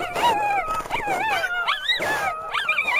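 A dog, caught by a wolf in a forest, yelps and whines frantically in pain and fear in high, wavering cries, a continuous run of distressed squeals and whimpers, with no speech.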